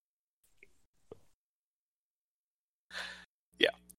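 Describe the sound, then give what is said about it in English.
A big yawn: a breathy, airy intake followed by a short voiced sigh that slides in pitch, with a couple of faint mouth clicks earlier and no talking. “Oh, big yawn.”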